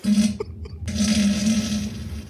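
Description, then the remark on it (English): A fart: a short, buzzy low blast, a brief pause, then a longer, loud, rasping one that sputters on for about a second and a half. No one talks. “It's the Fart of the Fart of the Week.”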